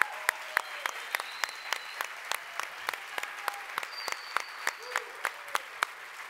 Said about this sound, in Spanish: Pero si le quieren dar un aplauso a nuestro Señor Jesucristo, eso sí se lo agradecería. But if you want to applaud our Lord Jesus Christ, y ese sí está bueno. Then that's better.